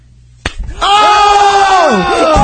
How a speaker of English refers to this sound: Oh, this is like a sexual slap? Well, yeah. You know, if we were having sex and you slapped me.